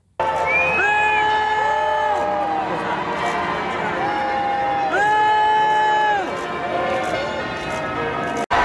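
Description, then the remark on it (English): A large crowd boos Harry and Meghan loudly and steadily as they leave St. Paul's Cathedral, long drawn-out jeering voices rising and falling in overlapping waves above a constant roar of crowd noise, with bells ringing faintly in the background. “Well, at least their journey home in disgrace was comfortable, unlike the loud and angry booing they received as they left St. Paul's Cathedral.”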